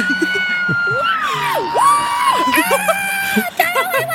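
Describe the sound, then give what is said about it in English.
A crowd at an awards ceremony erupts in loud, sustained cheering, with high whoops and yells rising and falling over a dense wall of shouting voices. “The crowd goes wild.”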